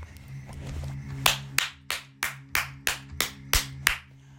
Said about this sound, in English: Chick, if you don't clap for yourself,